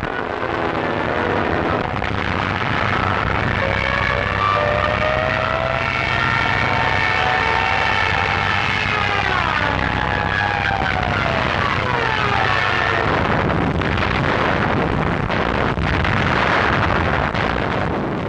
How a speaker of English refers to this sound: An entire flock of screeching Stuka dive bombers, along with a death-belching herd of panzers, attacked the Calais defenses. It was a symphony of death, conducted with Germanic efficiency.